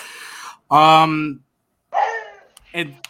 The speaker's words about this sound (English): What was that? I'm not sure whose dog agreed with me on that. Oh, that wasn't my dog.